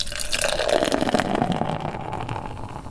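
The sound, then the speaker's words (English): A fresh pint of beer is poured from a tap, a steady foamy rush of liquid filling a glass with a rising gurgle, continuous for a few seconds with no voices. “That's a fresh pint of beer being poured. That kind of dampened, foamy sound is just so good, especially when you hear it in one of the Bay Area's many fine drinking establishments.”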